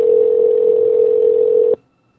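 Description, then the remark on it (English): A steady, loud telephone dial tone hums without a break for almost two seconds before a call to a woman, then cuts off abruptly into near silence. No voices are present. “Let's call this girl.”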